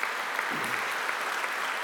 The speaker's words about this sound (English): Can we give a hand clap of praise that the tomb is empty this morning? Can we do that?